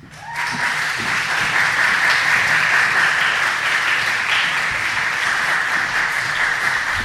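Sustained audience applause as one speaker finishes her story and the next speaker is introduced, a dense wash of many hands clapping that starts abruptly and stays loud and steady for about seven seconds, with no talking over it.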